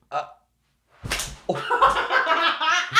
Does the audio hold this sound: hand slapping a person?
yes